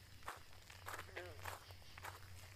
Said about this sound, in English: Footsteps. People were coming. They needed to hide.